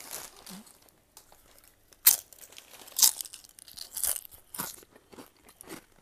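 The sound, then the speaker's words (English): A loud crunchy bite of a hot tortilla chip followed by several sharp crunching chews at irregular intervals, with no talking. “Alright, let's go ahead and take a big crunchy bite out of this chip.”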